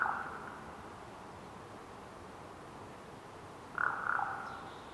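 A raven gives two hoarse, throaty croaks a few seconds apart, each short, over a quiet, steady forest background in the Pacific Northwest.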